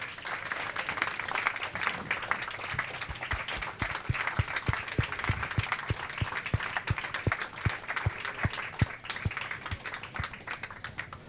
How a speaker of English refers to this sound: I just want to know, when they were clapping, and the woman who was doing the language for the hearing impaired was clapping, was she translating the clapping? I think was so. Or was she actually clapping?